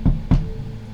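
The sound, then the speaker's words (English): Two firm knocks on a professor's office door in a university linguistics department, evenly spaced about a quarter second apart, each a solid, low thud that fades quickly, with no voices. “I'll knock on his office door.”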